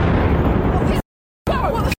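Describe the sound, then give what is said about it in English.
A loud, rumbling explosion boom roars through a city street at the crossroads of the world near Broadway theaters at 6:45 p.m., recorded on a tourist's cell phone; it breaks off abruptly, then returns as a noisy wash of blast rumble mixed with shouting voices of people running. “This tourist was recording on her cell phone when she heard the explosion.”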